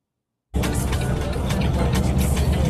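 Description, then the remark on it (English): After a brief silence, a steady, loud rumble of a semi truck rolling down the road kicks in abruptly, with continuous engine drone and road hiss heard from inside the cab, recorded by the truck's dashcam as it drives behind an SUV that brake checks it. “It's the truck that's recording him that's behind this SUV.”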